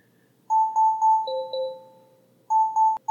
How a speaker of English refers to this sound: Oh? What is that noise? Oh, it's the timer. Groot! The timer is done.